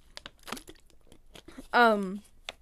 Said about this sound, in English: Goodness, that's my water. Let me get a sip, because I think I'm gonna have no voice tomorrow if I keep up this screaming.